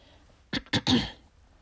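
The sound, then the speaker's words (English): A short cluster of three harsh, throaty coughs in quick succession, fairly loud, with quiet before and after and no talking. “I'm sorry that I'm coughing.”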